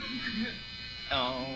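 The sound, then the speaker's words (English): A vacuum cleaner drones steadily as it cleans a rug, its motor whining with a buzzy hum, and a voice briefly breaks in over the noise near the end. “What are you doing with that vacuum cleaner?”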